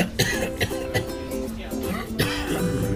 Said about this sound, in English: Okay, now that time you coughed at me.